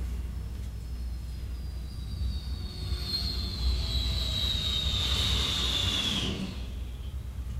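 A jet bomber roars past, its high-pitched whine gliding slowly downward in pitch over a steady low rumble that swells in the middle and then eases off. No one speaks.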